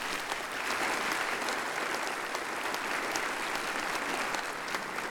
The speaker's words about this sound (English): And they're applauding with great hope that you'll get these answers right.